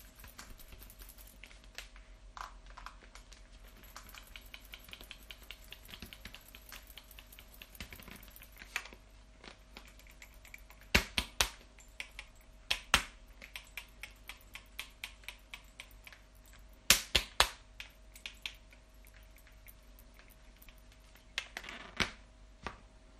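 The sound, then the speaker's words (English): Cream being shaken in a lidded jar: bursts of sharp, rhythmic knocks and rattles, loudest in two quick runs, over a faint steady hum with no talking. “I'm just gonna give it another shake.”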